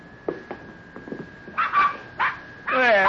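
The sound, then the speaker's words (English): A newborn litter of a hound's puppies whimper and yip in a stall in short, high-pitched bursts, growing louder and more insistent toward the end, ending in a drawn-out wavering whine over a faint steady hum. “That darn Rube, he went and had himself a batch of puppies.”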